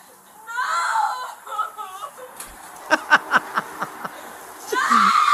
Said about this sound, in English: Like, this woman's screaming and crying. It's just like, oh, man.